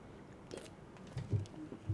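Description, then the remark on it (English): Someone takes a sip of a drink: faint wet mouth sounds followed by a few soft, low gulping swallows, with no talking. “I take another sip.”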